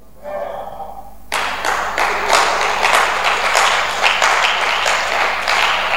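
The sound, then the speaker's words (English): A brief voice gives way to a crowd bursting into sustained applause, many hands clapping together in a dense, steady roar that stays loud until the end. “Well, and you to let somebody clap for you.”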